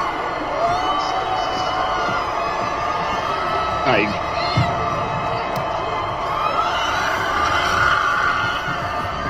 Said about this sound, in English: Because she's just off the chain, spraying champagne, screaming like an idiot.